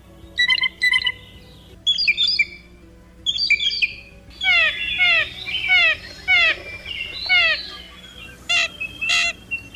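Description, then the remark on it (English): A blue jay gives a varied run of calls: three short harsh bursts with pauses, then a quick series of repeated slurred whistles, ending with two sharp, high cries imitating a red-tailed hawk, clear. “Let's give a listen to some of the many sounds and calls made by that clever member of the intelligent corvid family that also includes crows, ravens, and magpies.”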